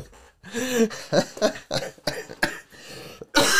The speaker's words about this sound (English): Seriously, like my ribs are like destroyed right now from 3 days of coughing.